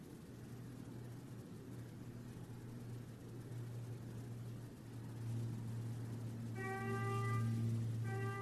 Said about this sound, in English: Even the weird honking horn, just fine. So weird a sounding alarm horn. Wow, it's like a flat tire or something.